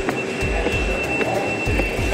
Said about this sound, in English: I'm going to walk through this door. It's still inside the Oculus World Trade Center train station.